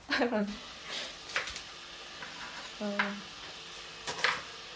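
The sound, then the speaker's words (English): A few sharp metallic clanks of pots and utensils knock at irregular moments while water is boiled for noodles and spring onions are added, with brief murmurs of voices between them and a low background hum. “Boiling some water for the noodles now? Yeah. Chucking the spring onions as well.”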